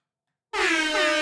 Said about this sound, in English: The new soundboard, I don't even know. Air horn.